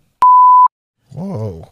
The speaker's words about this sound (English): It'll get beeped.